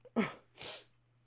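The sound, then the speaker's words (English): A forceful sneeze bursts out, then a second breathy, cough-like expulsion follows half a second later, with no talking around them. “I felt like I had to sneeze and cough.”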